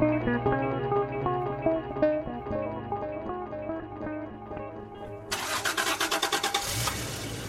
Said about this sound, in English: This is how summer days begin. The engine turns over. I negotiate my 93 Toyota pickup out of Seattle towards a day of climbing in the mountains.